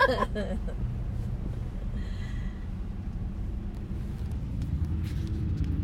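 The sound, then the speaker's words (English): Steady low rumble of cars creeping past in a big traffic jam in Lynchburg, engines droning for several seconds, with a brief faint squeal rising over the noise partway through. “Big traffic jam in Lynchburg.”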